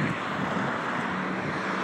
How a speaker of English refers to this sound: watching the cars passing by me again.